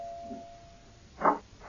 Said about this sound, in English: I'm coming. Wear out the bell.